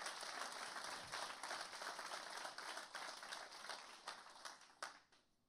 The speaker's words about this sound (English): You've done a great job. You've led well. I think we ought to clap. You've done a great job.